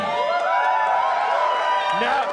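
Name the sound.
audience cheering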